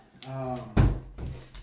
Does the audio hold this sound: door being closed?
yes